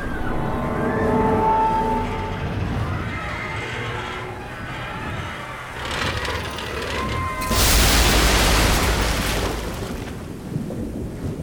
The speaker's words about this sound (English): I turned in time to hear the whip crack of thick cables snapping as the forward funnel toppled into the ocean that had risen up to meet it.